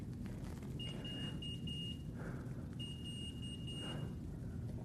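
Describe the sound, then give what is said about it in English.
A small diabetes alert device belonging to a type 1 diabetic beeps twice in bursts, each a quick run of short, high-pitched tones, heard over a steady low rumble. No one speaks. “I'm a type 1 diabetic, and I have a little beep, so I'm actually going to pay attention to my body and care for this.”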